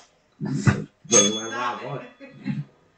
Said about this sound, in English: Smack my bell.